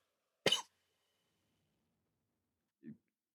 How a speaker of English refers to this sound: He's coughing as he drinks a beer.